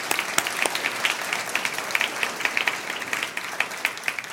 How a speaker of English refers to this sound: We have a lot of our college students who've driven in or flown in for this particular weekend. Can we welcome them home with a round of applause?